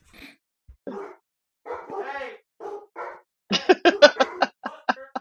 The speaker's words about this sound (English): I love the yelling at the dog who's barking thing, because you're just making more noise. Like it's the dog's like, you're joining in. We're all barking at us, right? We love to yell together.